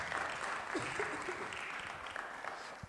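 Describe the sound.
A room full of people applauds steadily, a dense wash of hand claps holding at an even level for a few seconds, with a few faint voices mixed in.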